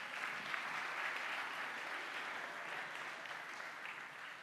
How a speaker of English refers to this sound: I've got some people who have come to be with us this morning. Well, that's a little bit better. Shall we give them a round of applause as they come and join us?